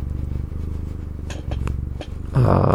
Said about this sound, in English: Oh, come on, Finch. You want to purr into the microphone? Yeah. Oh, that's good.